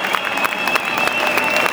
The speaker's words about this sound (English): Now the players are over applauding us tonight.